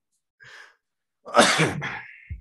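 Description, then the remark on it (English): A quick, soft intake of breath, then a single loud sneeze bursting out and trailing off into a breathy exhale, with no talking around it. “And try not to sneeze and cough over it.”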